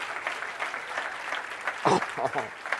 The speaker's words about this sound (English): I'm going to wait while you clap your hands like you mean it.